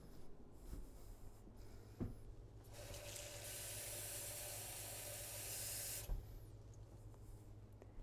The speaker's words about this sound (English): We start with a bowl, and then we head to the faucet.